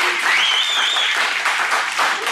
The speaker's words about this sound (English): So if you're like, what? Why are we cheering? That's why.